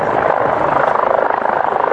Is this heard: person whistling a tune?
no